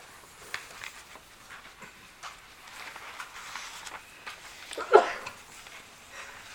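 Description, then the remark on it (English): A single sharp sneeze bursts out near the end, short and loud against a quiet, hissy background with faint breathy rustling and no talking. “Bless you.”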